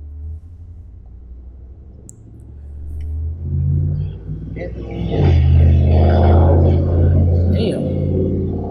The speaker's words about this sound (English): Damn. Somebody overcompensating with that big ass truck.